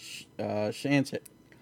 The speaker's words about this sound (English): What the fuck is that cat doing? Do you hear that? Sorry, that was me. Stop it. Cat. I thought it was me. No, the cat's going crazy.